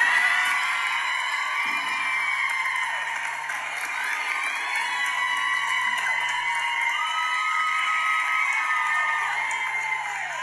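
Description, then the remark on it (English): A crowd claps and cheers for a speaker, a steady ten-second dense wash of applause mixed with whoops and shouts that stays loud and even throughout. “So can you just like clap for me?”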